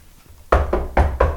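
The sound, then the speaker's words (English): Four quick knocks on a wooden surface, fairly loud, in a steady rhythm after a brief quiet moment, with no voices. “Knock on wood.”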